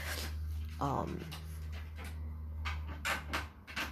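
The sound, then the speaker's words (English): A puppy lets out a short, high whimper, followed by quick breathy panting bursts, all over a steady low hum. “Okay, just me and some puppies.”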